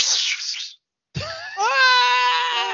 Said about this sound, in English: Wilhelm scream.